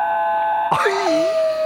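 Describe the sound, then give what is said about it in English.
A dog lets out an eerie, wavering howl that swoops downward in pitch and wobbles, over a steady high electronic-sounding tone. No one speaks. “It's a cute dog.”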